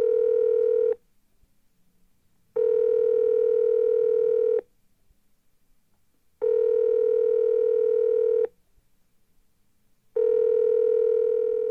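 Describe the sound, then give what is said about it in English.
A telephone ringback tone sounds four times in a steady on-off pattern as a phone call is placed, each buzzing ring lasting about two seconds with short silent gaps between. It is clear, with no voices. “let me see if I can grab Vanessa and get her on the phone”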